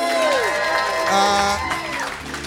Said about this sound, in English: So round of applause. They've made it into the fortress.